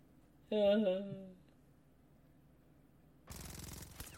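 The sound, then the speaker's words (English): A brief wavering cry rings out, then after a quiet pause a loud, rapid burst of automatic gunfire rattles on until the end, from a scene in a dubbed movie. “He's going to shoot you and you'll die. Bang, bang.”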